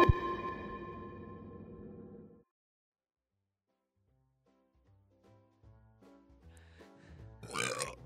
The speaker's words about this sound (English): You're good at burping.